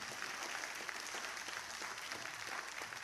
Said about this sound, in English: Let's give God a hand clap of praise for diversity.